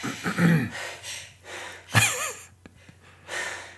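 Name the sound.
sneeze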